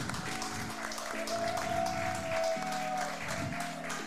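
An audience claps steadily at the end of a live show in a dense, continuous wash of applause. Sustained low tones and a thin higher whine run beneath it throughout.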